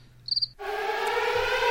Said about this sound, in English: Yeah, they all have instruments, but all sing. They sing. They sing. Crickets, sing your favorite song.